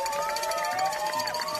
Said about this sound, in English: There's some real sirens in there from the police. Those aren't behind you. Unless they are. Fully defunded. The sirens still work.